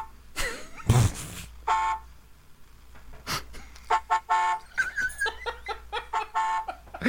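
A car horn honks aggressively in a long run of short, insistent, loud blasts from a video, with a brief burst of noise near the start.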